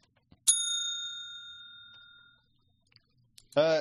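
A single bright bell ding marks the start of a short spoiler segment. It has a sharp strike and long ringing overtones that slowly fade over about two seconds, followed by a voice starting to speak at the very end.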